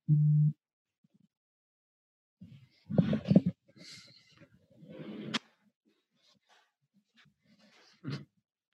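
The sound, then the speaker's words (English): A phone notification beeps once, a short steady electronic tone lasting about half a second, clear, followed by scattered soft rustling and mouth noises. “Get a notification. I have ADT, so I get notifications if somebody's at my front door and stuff, but that was not for that.”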